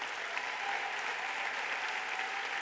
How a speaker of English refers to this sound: We're going to cheer you on.